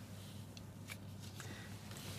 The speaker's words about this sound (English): I'll put the card aside. I'll have it another one. Yeah. We'll shuffle it again.